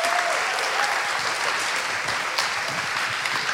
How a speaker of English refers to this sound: So why don't we give a huge round of applause